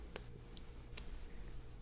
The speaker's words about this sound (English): That keyboard sounds nice, though, when you hear somebody type on it. It does. I gotta say.